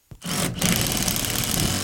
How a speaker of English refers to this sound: cuts out a pane of sheet metal from a new gas furnace he's hooking up today.